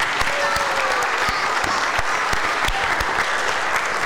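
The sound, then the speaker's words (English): A church audience claps steadily for the team that helped run the week's children's activities, a dense wash of many hands with a few sharper individual claps standing out, loud and sustained with no voices over it. “So round of applause for the team.”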